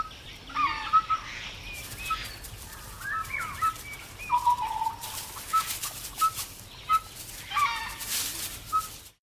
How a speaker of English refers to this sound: This is true, even the whistling part. Instead of barking or howling, Dhole calls are whistles. This is what a Dhole sounds like.